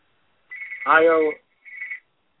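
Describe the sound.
A phone rings in the background in two short electronic bursts, the first longer, with a brief voice sound overlapping it; fairly clear.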